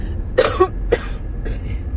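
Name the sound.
coughing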